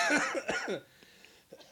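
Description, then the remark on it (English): A rapid burst of harsh, sputtering coughs, as if someone is choking, fades into a quiet pause before a couple of softer coughs or gasps at the end. “Oh my goodness. I nearly choked.”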